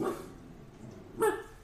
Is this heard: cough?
no